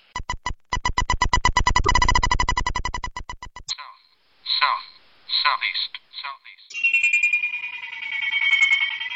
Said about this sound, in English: One of the electronic bite alarm systems I was using out on the ice is a combination of a carp bite alarm system for carp fishing. You can buy these anywhere on the internet.